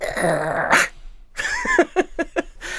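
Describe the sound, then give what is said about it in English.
A person imitates a dog, with a drawn-out whiny growl, a brief pause, then a quick run of four or five short, high, yappy barks. “Can you do a good dog?”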